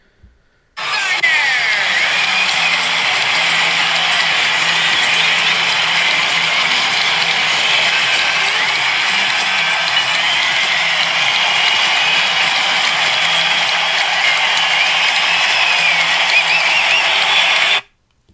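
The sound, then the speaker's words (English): A baseball stadium crowd, in sound posted by MLB, roars and cheers for Bumgarner for about seventeen seconds in a loud, steady wall of noise that starts abruptly and cuts off at the end, with no clear individual voices. “They posted the reaction of the crowd's reaction to Bumgarner.”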